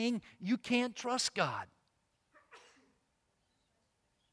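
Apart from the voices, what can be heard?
sneeze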